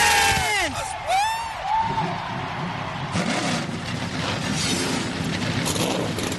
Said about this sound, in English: Engines have fired on pit road. In a few moments, we'll send the field up on the racetrack to run a few pace laps before we get the start for the Banquet 400.